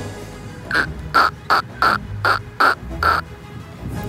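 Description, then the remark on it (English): A woman in a park imitates a duck to try to summon one, letting out about eight harsh, nasal quacks in a quick, steady rhythm, fairly loud, with only faint background noise between them. “She can obviously do a duck noise.”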